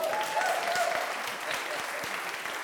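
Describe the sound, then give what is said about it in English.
A crowd claps steadily in a dense, continuous round of applause, with faint high whistles or cheers near the start, lasting a few seconds at an even, moderately loud level. “Okay, first of all, round of applause.”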